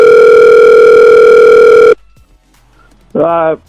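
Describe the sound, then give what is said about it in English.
A loud, steady electronic telephone ring tone sounds for about two seconds as a phone call is placed, then cuts off abruptly, leaving near silence before a voice briefly speaks. “So we're going to give him a call.”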